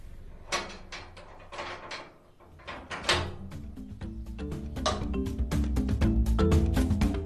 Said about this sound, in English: locking all the locks of her aunt's flat, wondering where on earth her auntie was going